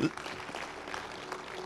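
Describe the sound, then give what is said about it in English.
An audience clapping their hands together in praise to the Lord, a dense, steady patter of many overlapping claps at moderate volume with a faint murmur of voices underneath. “Clap your hands like you.”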